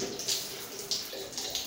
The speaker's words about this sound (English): After refilling in the shower, this water will be saved for use in the bathroom the next time taps run dry.